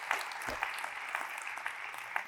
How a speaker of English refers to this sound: So give them a big round of applause this morning.